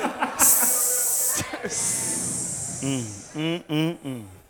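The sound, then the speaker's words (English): Sustained, sharp snake-like hissing, likely from several people, fills the first couple of seconds, then gives way to a few short bursts of chuckling laughter. “Sounds like there's some snakes that just entered the room.”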